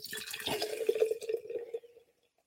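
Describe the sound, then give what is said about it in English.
A light Mexican lager with a little lime pours into a glass in one steady stream for about two seconds, a gurgling fill with a bright, fizzy splash, then stops abruptly. No one speaks. “Let's give us some pour.”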